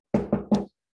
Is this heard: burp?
no